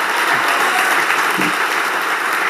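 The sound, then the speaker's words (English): An audience claps for Jesus together in a dense, steady wash of applause that holds at an even, loud level for the full stretch, with no voices rising above it. “Now, come on, give Jesus a clap in the house, somebody.”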